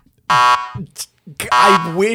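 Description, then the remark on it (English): A loud, harsh negative buzzer sounds twice, each blast about a quarter second long, with brief vocal noises in between. “I wish that negative buzzer was more loud and annoying just to reflect how untrue this is.”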